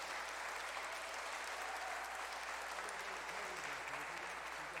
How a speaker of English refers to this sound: So could we give them a warm round of applause to the team here?